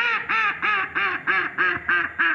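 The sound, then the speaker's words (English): A female mallard duck quacks in a steady series of about eight loud, harsh calls, evenly spaced with short gaps between them and no talking, heard while bird-watching at an outdoor classroom. “That's a mallard duck.”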